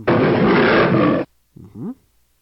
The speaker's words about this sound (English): What does a lion sound like? Let's try that. Alexa, what does a lion's roar sound like? Here's a lion roar.